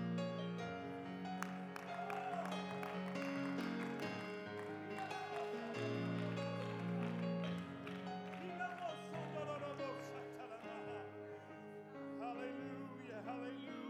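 An audience claps along in a steady rhythm, clapping their hands to the Lord at a church worship service, the hand claps mixed into loud, full worship music with voices singing, continuing throughout without pause.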